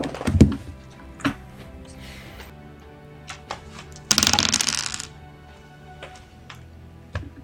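Dice for a tabletop role-playing game clack as they are picked up, then a short rattling roll across a hard surface, with a few scattered sharp clicks before and after. Fairly quiet, no voices.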